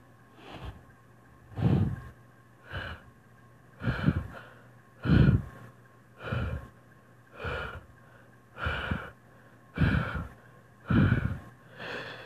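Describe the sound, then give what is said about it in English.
Slow, breathy exhales through the mouth during a breathing exercise, fairly loud, repeating in a steady rhythm about once a second, roughly ten in all, over a faint constant hum with no talking. “Exhale 8 seconds through your mouth.”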